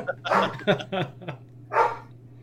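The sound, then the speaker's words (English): A dog barks several times in quick, irregular bursts, then lets out one more bark after a short pause, with a steady low hum underneath. “And, of course, people were laughing, so that means the dog has to bark.”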